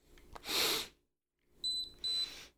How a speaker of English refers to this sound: Your nose beeped a kind of acknowledgement. Do you have a mechanized sort of cyber nose there? Yes, indeed. Mechanized cyber nose.